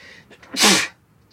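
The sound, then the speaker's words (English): A single loud sneeze bursts out abruptly after a brief sharp intake of breath, a bright hissing blast lasting about a quarter second before quiet returns. “Bless you.”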